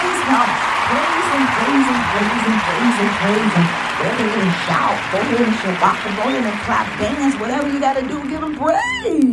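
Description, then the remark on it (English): An audience claps steadily while many voices shout and call out praise together, a loud, dense, continuous wave of crowd noise filling the room throughout. “Go ahead and shout. Go ahead and shabbat. Go ahead and clap.”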